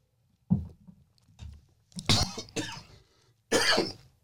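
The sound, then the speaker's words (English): A fit of coughing after swallowing water the wrong way while drinking: a couple of low, muffled throat sounds give way to three harsh, loud bursts of coughing, the last one sharp and breathy, with brief pauses between. “Yeah, that's the sad part, swallowing wrong on water.”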